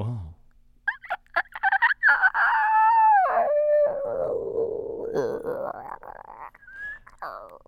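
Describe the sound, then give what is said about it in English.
A person vocally imitates a whale song, a long, loud sustained moan that slides up and down in pitch for several seconds, wavering and dipping low before rising again near the end. “To do a whale riff the best you could for me.”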